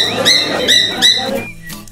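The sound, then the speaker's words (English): A bird squawks three times in quick succession, loud, high-pitched and harsh, with short bursts about half a second apart before fading to a faint trailing chirp. No one speaks. “Bird. You're right.”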